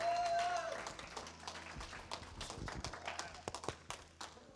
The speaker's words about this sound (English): So please give a round of applause for Pastor Brinson Barker.